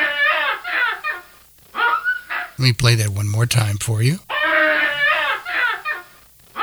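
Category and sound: animal, baboon call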